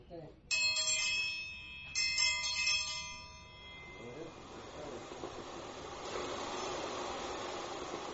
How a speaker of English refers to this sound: With the machine secured in the regolith and plugged into the external power supply, the digging began with the ringing of a decidedly low-tech bell.